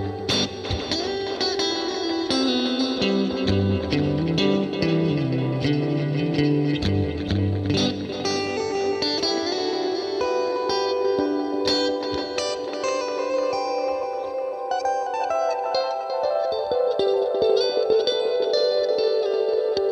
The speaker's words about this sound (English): If I don't have my big crazy echo sound, I can get rid of that hum. That was probably driving three guys crazy who have better speakers than the rest of us.